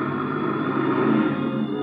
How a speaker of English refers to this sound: Just as I get there, I hear a car winding down the long driveway, so I duck into the bushes.